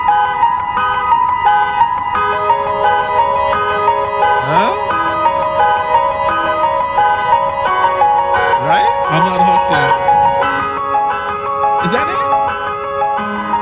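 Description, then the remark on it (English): A keyboard tune built from car alarm sounds: steady synth chords under a rapid, regular pulsing beep, with occasional swooping siren-like glides, loud and continuous throughout. “There's this keyboard player who I guess was very creative and decided to make their own song out of that.”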